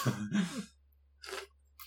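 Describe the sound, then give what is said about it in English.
Two harsh coughs from a person, followed after a short pause by a breathy throat-clearing hack and the start of another; no speech. “You expect me to answer while I'm coughing?”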